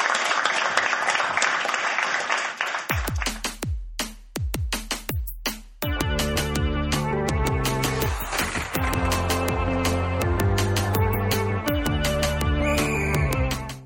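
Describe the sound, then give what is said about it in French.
A burst of audience applause and cheering for the La Balustrade team at ZooFest 2017 fills the first few seconds, then cuts off as punchy drum hits lead into loud, steady music. “Un moment d'applaudissement pour la gang de la balustrade.”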